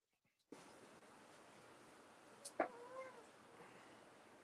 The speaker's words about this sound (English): Yeah, stupid cats in heat. Again, yes, I feel like she's always in heat.